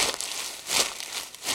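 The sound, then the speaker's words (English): Crumpled half-inch magnetic tape, used to imitate the sound of leaves, crunches and rustles like dry leaves, a hissy, bright crackle that swells in a few uneven bursts, with no voices. “And the half-inch tape sounds more like leaves.”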